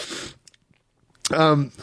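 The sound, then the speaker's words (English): A person sniffling and swallowing mucus from a congested throat and nose: a short nasal sniffle, then soft wet mouth clicks like a congested swallow, followed by a brief voiced sound, fairly quiet. “If you can hear me sniffling and swallowing all this gunk that's in my throat and my nose, this is actually a later byproduct.”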